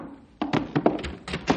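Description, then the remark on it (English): A door at the Rangers' headquarters opens by itself with a quick run of hollow thunks and clunks, about six irregular knocks over roughly a second, moderately loud, with no voices. “Hey, the door's opening by itself.”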